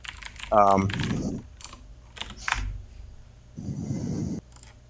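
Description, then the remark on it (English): Computer keyboard typing while searching online for the Moonlit Black Cats logo from Sword Art Online, with irregular bursts of key clicks and a few separate taps, plus a brief vocal sound near the start. “I'm looking up Midnight Black Cats right now. That's the clicking.”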